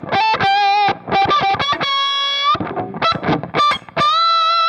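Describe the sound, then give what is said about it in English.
Loud fuzzed electric guitar played on the neck pickup above the 12th fret, giving bright octave-up harmonics, as bursts of short choppy notes broken up by a few longer, buzzing sustained notes, with no one talking. “You bring it up to the neck pickup and you go over like above the 12th fret and it starts doing weird octave stuff, like the weird Octavia thing.”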